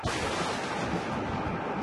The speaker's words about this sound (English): You hear the life-saving sound of a thunderclap.